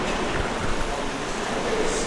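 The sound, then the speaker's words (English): Heavy rain pours down outside in a dense, steady hiss that stays loud and unbroken for the whole stretch, with no clear voices over it. “Can y'all hear the rain?”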